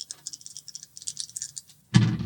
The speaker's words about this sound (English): So I think roll two dice, one prepared, one regular for patience.